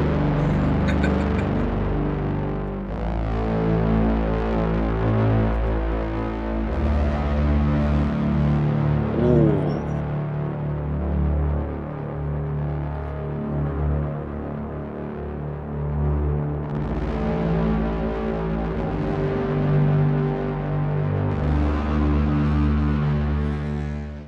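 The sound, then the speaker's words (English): A gritty, distorted FM synth drone with dense harmonics, its tone sweeping and throbbing as an LFO slowly opens and closes the filter, steady and loud throughout with no voices. “Distortion, and then there's an LFO in the filter.”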